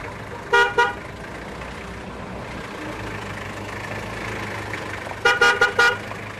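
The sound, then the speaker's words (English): Car horns honk over a steady rumble of engine noise inside a moving bus: two short toots early on, then a rapid burst of four or five honks near the end. “At the end of the bus journey, relief.”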